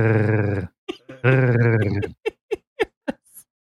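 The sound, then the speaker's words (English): A fairly loud guttural trill rolled at the back of the throat with the back of the tongue: two sustained raspy, vibrating bursts followed by a string of short, clipped throaty pulses. “I can do the back of my throat, but I can't do it. Yeah, really. You roll the back of your tongue.”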